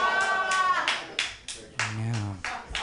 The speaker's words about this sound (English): One round of applause.